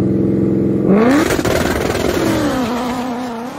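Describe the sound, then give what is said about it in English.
A stick-shift drag car with an ESS setup and a 100 millimeter pulley holds a steady, buzzing rpm on a two-step in the heat, then the clutch drops and it launches hard and loud, the engine note climbing, then falling as it pulls away. No talking. “And I love that he leaves on a two step and straight dumps the clutch.”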